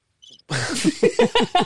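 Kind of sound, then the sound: insect, crickets chirping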